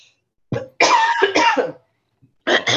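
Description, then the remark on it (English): A person with a tickle in their throat coughs and clears their throat: a short hack, then a harsh raspy burst with a second rough cough, a pause, and another loud cough starting at the end. “Oh, you got that smoker's cough.”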